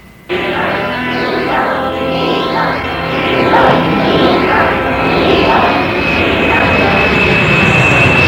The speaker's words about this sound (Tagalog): Tanghali na 21 ng Agosto, 1983. Lumapag ang eroplano ng China Airlines sa paliparan ng Manila International Airport mula sa Japan.